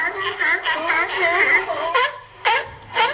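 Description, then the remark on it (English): Seals barking: a run of wavering, high-pitched yelping calls, then three short, harsh barks spaced about half a second apart, loud and with no one talking. “They're barking.”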